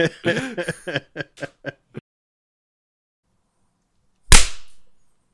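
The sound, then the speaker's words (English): A quick series of short vocal bursts, then a pause, followed by one loud, sharp gunshot bang with a brief ringing tail that fades out. “I won't edit in a gunshot sound”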